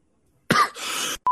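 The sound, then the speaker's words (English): A single harsh cough bursts out, followed by a rough, breathy rasp as the throat clears, then a brief tonal blip at the very end. “I didn't fully hear you because I was coughing.”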